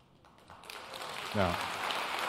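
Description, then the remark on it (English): A church audience breaks into scattered applause after an announcement about building the first phase of a new campus, quickly swelling into steady clapping across the room, with a voice briefly rising over the noise near the end. “Now, I wasn't pausing for you to clap.”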